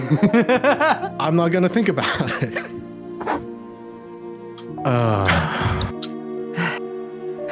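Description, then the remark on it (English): Heavy, deep breaths in and out, loud, taken by a person on the floor, with strained, voiced gasps and rasps between them and a short gap of quieter breathing in the middle. “Just taking deep breaths in and out on the floor.”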